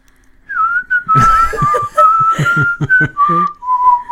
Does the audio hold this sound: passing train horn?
no